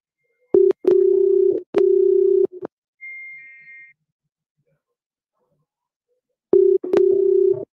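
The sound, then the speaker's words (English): A telephone line rings out with a steady electronic ringback tone, one long burst, a pause, then another ring starting, with no one answering. A faint short beep sounds during the silence. “He said, I ain't picking that damn phone up.”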